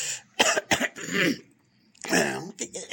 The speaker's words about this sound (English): Sin, you know, but I just need to clear my throat a little bit.